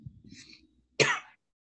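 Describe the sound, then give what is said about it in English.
A single sharp, loud cough close to the microphone, preceded by a brief low throaty rumble and faint breathy sound, then silence. “And it's tight, cause like, see, right now I'm coughing.”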